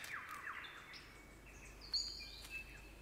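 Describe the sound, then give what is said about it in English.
A superb lyrebird of Southern Australia sings a varied, intricate song of high whistled notes, sweeping slides and quick chirps, fairly faint, heard alone over a soft steady background hiss. “What bird has the most elaborate, the most complex, and the most beautiful song in the world?”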